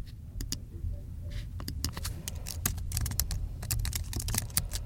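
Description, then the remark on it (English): Rapid, irregular clicking of fingers typing on a computer keyboard, fairly steady throughout, over a low background hum with no voices. “So typing's a really common one that can stir up the ulnar nerve, and it often doesn't just stir up the ulnar nerve, it makes the median nerve quite unhappy as well, where the median nerve crosses at the wrist.”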